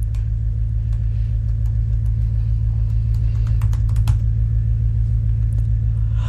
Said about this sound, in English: No, his truck's not that rumbly. It's rumbly, but not that rumbly. That is super rumbly.